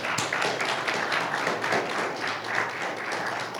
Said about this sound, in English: And let's give the Lord a hand clap for.